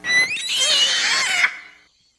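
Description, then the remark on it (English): A shrill, high-pitched pig squeal lasting about a second and a half, loud and wavering with harsh upper tones, then cutting off into a short fading tail. “Oh. That's like a pig. So, squeal.”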